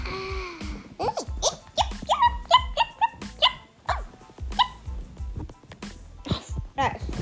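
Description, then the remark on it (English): Several dogs bark and yip in quick, overlapping bursts, loud, with a cluster of rapid barks in the middle and scattered yelps before and after, some vocal sounds mixed in. “This dog party is epic.”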